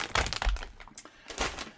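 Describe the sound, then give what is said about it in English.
Crisp crunching of Juanita's tortilla chips made of corn, oil, salt and a trace of lime: a cluster of sharp, crackly bites up front, then a short pause and another brittle burst of crunches, with no talking. “I have some Juanita chips right here.”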